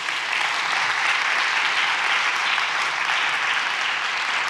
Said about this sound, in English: This is the day that the Lord has made. Let us rejoice and be glad in it. Won't you give the Lord a hand clap of praise?